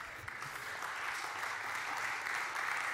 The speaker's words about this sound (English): Not very many of you are clapping. I noticed that.